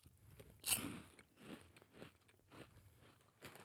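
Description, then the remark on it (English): A crisp bite into liquorice coins followed by several soft, irregular chewing bursts, snappy at first, then quickly less crunchy as they melt in the mouth, with no talking. “They're not as crunchy as I thought they would be.”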